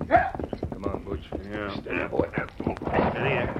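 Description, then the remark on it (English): Horse hooves clop in a quick, steady rhythm as horses are ridden at a steady pace, while people talk over them, the hoofbeats partly buried under the voices. “Set the pace according to what your horse can stand.”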